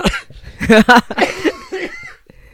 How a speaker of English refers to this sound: You're making me cough.